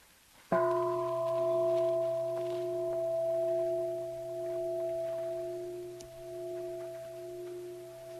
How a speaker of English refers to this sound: So just allowing the words to fade as the bell rings and fades. Allowing the vibration to have its course in time, coming back into the sensations of the body.